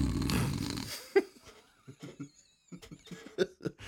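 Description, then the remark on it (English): Someone imitates snoring: a loud, rough, rasping snore for about a second, then a scatter of quieter breathy snorts and throaty clicks. “You'd hear me snoring.”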